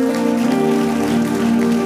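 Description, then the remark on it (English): A church audience claps steadily and densely as a clap offering to God, a continuous wash of applause lasting the whole moment, with sustained musical tones humming underneath. “I want you to be very grateful to God, and in 10 seconds, give him a very powerful clap offering.”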